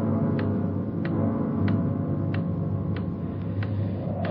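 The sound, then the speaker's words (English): A clock ticks steadily and prominently, about one sharp tick every two-thirds of a second, over a constant low rumbling hum, with no voices. “Sure a loud clock.”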